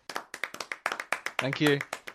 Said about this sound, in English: Can I have a round of applause? I can, in fact, do that, which I shall do now.